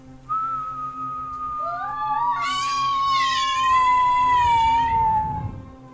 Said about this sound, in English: All of you hear this very distinctive whistling noise. You hear this.